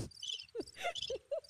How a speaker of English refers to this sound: The crickets?